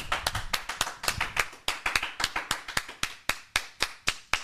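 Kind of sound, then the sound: crowd, hands clapping in applause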